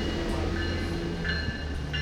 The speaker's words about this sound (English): Train departing at 7:33. Next station, Larkspur.